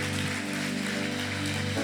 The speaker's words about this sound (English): The Lord a round of applause.